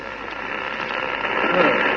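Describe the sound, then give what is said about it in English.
Dense radio interference static fills the sound channels, a steady crackling hiss that grows gradually louder over a couple of seconds, with no clear voices through it. “The interference is building up again, Colonel Kent.”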